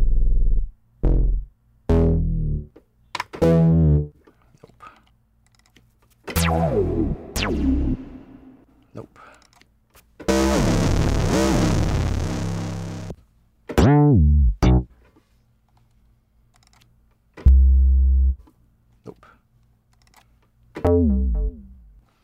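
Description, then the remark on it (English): A string of short synthesized effects designed in the Massive software synthesizer, each separated by silence: gritty distorted bursts, sweeping tones, and a longer blast of harsh noise, with no one speaking. “So I think of it less in terms of frequency and tonality, and more in terms of effect. I'm back in massive now.”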